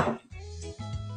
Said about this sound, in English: Right, okay, so now I'm going to take the ice and I've got a mixing glass. I'm going to put that all in there, like that.